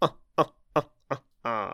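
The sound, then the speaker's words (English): A human voice imitates a drongo's snooty bird laugh: four quick, clipped staccato bursts, then one longer drawn-out harmonic note. Loud and alone, with no talking over it. “Our furry little friends are once again cheated out of their dinner, and the drongo laughs its snooty bird laugh.”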